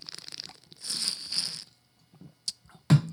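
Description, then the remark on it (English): Someone takes a swig of water: a burst of crinkly, slurping noise that lasts under a second, then quiet, a soft swallow and two sharp clicks at the end. No one speaks. “All right, let's get a swig of water here.”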